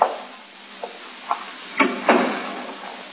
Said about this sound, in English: Please close the door. I can't get the chain off if you don't close the door.